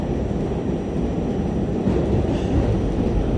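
A subway train rumbles steadily along the rails, a loud, continuous low roar with a faint rattling texture and no voices, holding an even level throughout.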